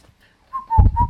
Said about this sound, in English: Whistling is bad for podcasts. I found that out the hard way.